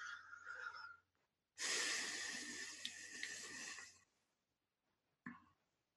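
Slow, deep breathing: a short inhale, then a long, airy exhale lasting a couple of seconds, and the start of another breath. A faint low hum sits underneath.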